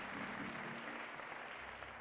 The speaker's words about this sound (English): Let's give our young people a hand clap.